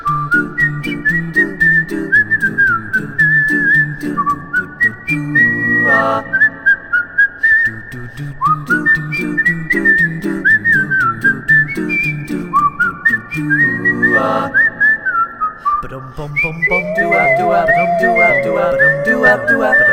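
Someone whistles a bright, bouncy tune over a full instrumental accompaniment, the melody running steadily and close up for the whole stretch without any singing.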